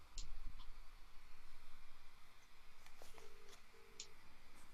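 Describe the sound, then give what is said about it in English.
A phone call being dialed: a few faint clicks, then two short, steady electronic tones in quick succession, heard fairly quietly against a low background hum with no one talking. “Let me call him on his phone.”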